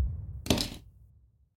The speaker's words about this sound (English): And for a bit of added whimsy, let's roll it with my owlbear dice.